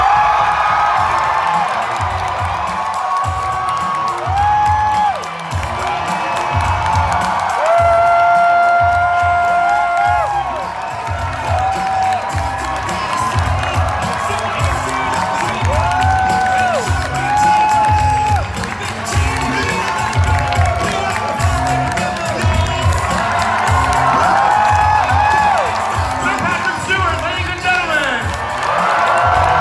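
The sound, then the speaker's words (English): A huge convention crowd screams and cheers nonstop for half a minute as Patrick Stewart is welcomed to a panel, loud and dense, with countless high-pitched shrieks and whoops rising over a steady roar and scattered clapping. “If you're listening to us on any other platform, you'll get to just hear the sheer amount of screaming, which may or may not include myself.”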